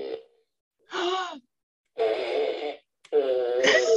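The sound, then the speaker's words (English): A Minions toy fart gun blurts out a series of buzzy, wobbling fart noises, one burst after another with short pauses between, loud with no talking. “The fart gun.”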